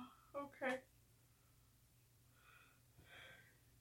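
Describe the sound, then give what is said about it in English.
A woman yawns in the morning: two quick, loud breathy vocal bursts, then a softer, drawn-out sighing tail fading away, with no words spoken. “So yeah, that's what this is her topic, and she's like yawning and sorry, I'm at a rough morning.”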